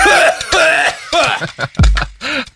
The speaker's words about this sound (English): is coughing up the marijuana he just smoked.